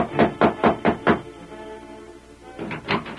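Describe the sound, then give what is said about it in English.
Five firm knocks on a wooden ranch house door in a quick, even rhythm, a short pause, then another run of three knocks, clear with no voices. “While the Lone Ranger and Tonto were riding toward the X Bar X Ranch, Ted Bassett was knocking at the ranch house door.”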